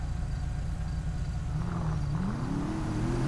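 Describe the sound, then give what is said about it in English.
A car engine idles in traffic with a steady low rumble, then revs up, its whining pitch climbing over the last couple of seconds. It is loud and continuous, with no voices. “Waiting on traffic, I guess.”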